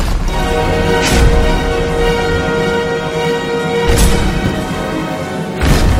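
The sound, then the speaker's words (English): In a factory, three large stone slabs smash down on passing coal, flattening it, in three loud, crunching impacts spaced a few seconds apart, over a steady, humming machine drone. No one speaks. “But, unfortunately, they are moving up into a device that smashes the coal flat.”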